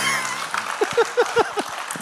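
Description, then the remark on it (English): Clapping from an audience: a soft wash of noise, then a quick run of six or seven sharp, evenly spaced claps standing out before fading, with no talking. “I think that's, clap.”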